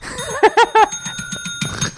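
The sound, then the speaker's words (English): A bell, rung as a joke sound effect, rings three times in quick succession, bright, with its metallic tone lingering and fading over a soft background rumble. “I have to ring the insufferable bell really quickly.”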